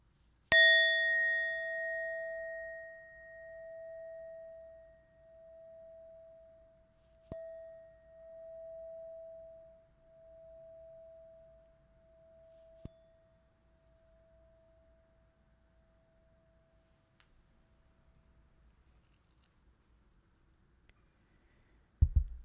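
A meditation bell is struck once, its clear ringing tone lingering and slowly fading away over nearly twenty seconds in an otherwise quiet space, with no talking.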